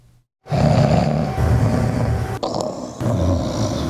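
loud snoring

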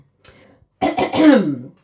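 throat clearing

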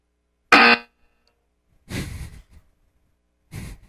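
buzzer sound effect

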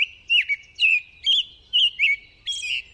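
american robin song

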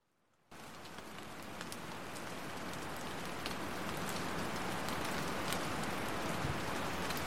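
drizzling rain

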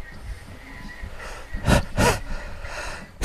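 sneeze

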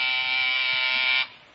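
doorbell buzzer ringing

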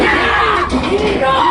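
people screaming

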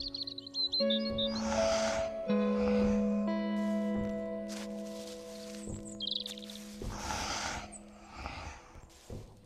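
birds chirping

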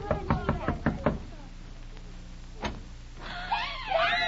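knocking on a door

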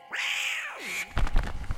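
cat yowling

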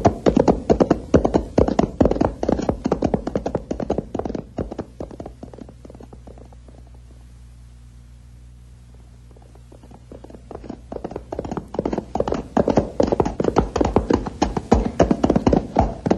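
horse hooves clip-clopping

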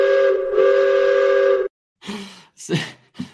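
train whistle sound effect

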